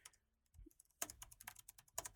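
Fingers typing on a computer keyboard while looking something up: a few scattered clicks, a short pause, then a rapid, steady burst of crisp keystrokes clattering with no voices.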